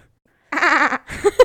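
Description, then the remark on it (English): A person gives a quavering, goat-like bleat lasting about half a second, then a shorter warbling follow-up, fairly loud with silence before it. “Can you do a little goat?”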